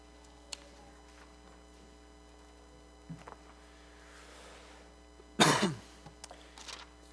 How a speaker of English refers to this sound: You have to excuse the cough.